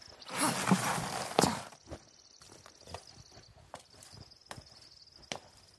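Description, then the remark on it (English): Horse hooves clop slowly and unevenly on hard ground, a handful of sharp steps spaced apart, with a steady high insect chirr in the background after a brief rushing breath at the start. “We have to stop. The horses won't make it much longer if we continue.”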